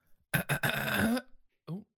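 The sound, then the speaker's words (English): A loud hiccup with a throaty, drawn-out, burp-like quality, followed after a short pause by a briefer voiced gulp. No other sounds around it. “got a little bit of a hiccup there.”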